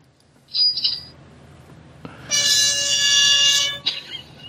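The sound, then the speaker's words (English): A party horn sounds: a couple of brief high squeaks, then one loud, buzzy, sustained blare lasting about a second and a half before cutting off, with no talking. “I thought that was the party horn.”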